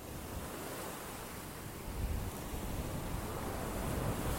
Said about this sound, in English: Once again, I'm walking at my favorite place. This is the Atlantic Ocean that you hear. I'm in Myrtle Beach, South Carolina.